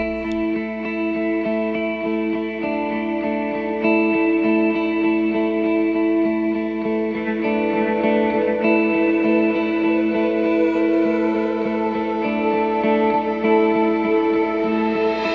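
A worship song plays, its instrumental opening of sustained, layered chords with a warm, shimmering, effects-laden tone at steady loudness throughout, with no voice yet.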